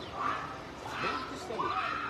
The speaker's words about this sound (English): Folks, can you hear all the screaming?